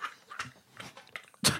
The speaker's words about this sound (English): I can hear someone. I can hear someone breathing. Someone is breathing very heavily.